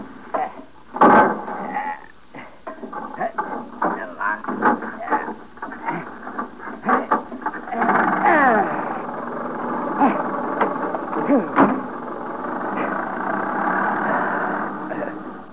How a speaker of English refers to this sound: I'll take you in my motor car. Oh, now. You will go slowly, won't you? Oh, very slowly. There. You get in. I'll crank the engine.